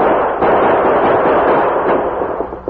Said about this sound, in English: Gunman's victim staggered a couple of steps and dropped behind the shed, while the Lone Ranger and Tonto, dashing downhill, maintained gunfire at the distant rock pile.